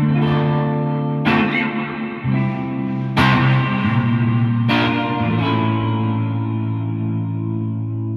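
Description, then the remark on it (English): Sustained guitar chords played through a TC Electronic Arena reverb pedal ring out with a huge, spacious reverb, each strum blooming and lingering in a long wash. Four strong attacks, no voices. “I bought the TC Electronics Arena and the TC Electronics Trinity T2 Reverbs.”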